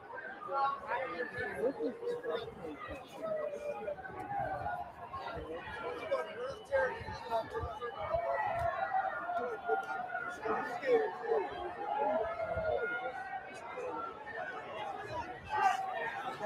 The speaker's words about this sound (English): of the Capitol here, where some supporters have made their way onto the balcony. There's also something black on the window there. Not sure exactly what that is, if that is paint or there's been crowds up there for the last 35 minutes or so as well.